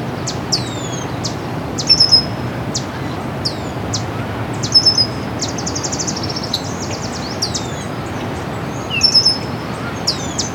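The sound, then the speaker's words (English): Baltimore oriole song: short whistled phrases recurring a few times among other chirping birds, set against a steady low rumble of wind or traffic outdoors. “Baltimore Oriole here somewhere. There it is again.”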